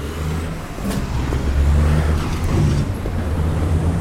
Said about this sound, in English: Across four lanes of traffic.